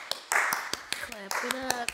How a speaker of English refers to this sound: Clap it up.